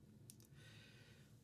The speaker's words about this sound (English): I gotta stop yawning. Holy shit. I stayed up too late. I stayed up too late. I stayed up too late.